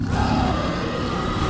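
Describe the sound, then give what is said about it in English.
A loud, sustained scream by Hulk Hogan with a deep, growling dinosaur roar effect layered beneath it, likened to a T-Rex or a Jurassic Park raptor, holding steady for a second and a half over a dense wash of crowd noise. “Every time Hulk Hogan screamed, they would put like dinosaur noises behind him.”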